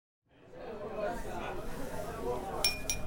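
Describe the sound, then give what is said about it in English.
A team at a live group event chatters steadily. Then the team leader holds up a hand and taps a glass a few quick, bright times, with high, clear pings over the ongoing babble of voices. “holds up a hand and taps a glass.”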